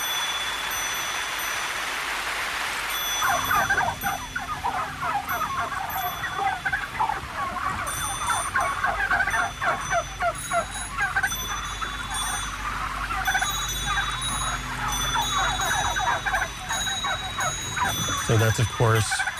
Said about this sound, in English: Oh, I didn't know that it was turkeys. I thought that they were like Canadian loons.